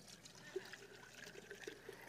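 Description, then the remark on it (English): Water trickles steadily into a container, a soft continuous pouring sound with faint splashes, fairly quiet, with no one talking. “And you see, here's human nature that's being poured into this container.”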